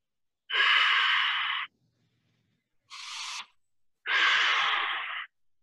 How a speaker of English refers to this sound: Nice big breaths. So when you do that, you set a timer for 2 minutes. And you say, the only thing I'm going to worry about right now is just breathing.